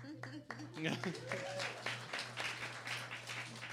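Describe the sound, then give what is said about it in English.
An assembled family breaks into applause after a painter moves the apostrophe on the Murphy's beds store sign, a dense wash of clapping that stays steady throughout, with voices calling out and cheering over it and a low steady hum running underneath. “Applause breaks out.”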